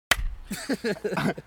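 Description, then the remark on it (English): A single soft hand clap, a quick dull smack, right at the start, followed by a person talking for the rest of the moment. “It was a weak clap.”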